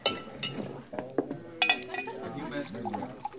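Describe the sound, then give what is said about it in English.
Glasses clink several times in quick, uneven succession as a glass of rye whiskey is served, the bright taps clear, with people talking underneath. “Oh, glass of rye?”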